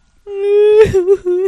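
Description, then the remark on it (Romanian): A voice fakes a drawn-out wail, a long sustained cry that breaks into a few shorter sobbing bursts, fairly loud, with no other sounds around it. “Măcar o recenzie mică să mă pot opri din plâns.”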